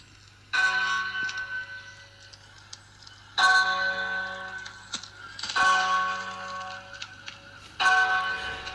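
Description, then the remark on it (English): Church bells rung by a clergyman at his church in the Exeter diocese toll slowly and solemnly in a mournful funeral style, four resonant strikes spaced a few seconds apart, each ringing out and fading over a low steady hum. “he was ringing the bells at his church in a funereal style to express the mourning of the potential loss of the hospital.”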